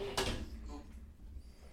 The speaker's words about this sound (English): It's a good thing that beer was empty. I knocked it over.